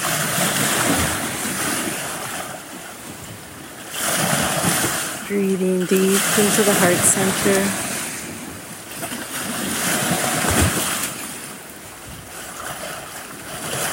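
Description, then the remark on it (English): Waves of the big lake Kitchigami wash against the shore in slow, repeating surges after a fresh snowfall, with steady wind noise throughout; a soft, calm voice speaks briefly over the water partway through. “Greetings from the big lake, Kitchigami. Tapping into her power, her energy, her song.”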